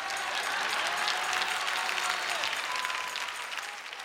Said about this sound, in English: I rest my case. Insert clap there.